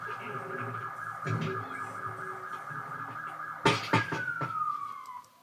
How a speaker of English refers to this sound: You hear that ambulance, Harlene?